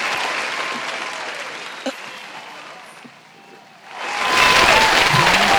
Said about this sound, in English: It's a standing ovation. It's as long as hell. So I'm gonna give it home. I bet you it's still long. You want to see? Yo. It's long as hell, yo. For no fucking reason.